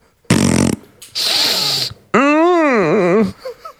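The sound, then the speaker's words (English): A voice imitates a short buzzy fart, then a long hissing sniff, followed by a loud wavering moan that rises and falls in pitch, as if someone farts and then sniffs it. All three sounds are made by mouth and played down a microphone. “it's someone farting and then sniffing it and then going, right.”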